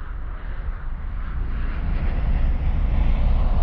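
A steady, heavy roar of an airplane engine at Sydney Airport, a deep broad rumble that swells slightly louder over a few seconds, with no voices.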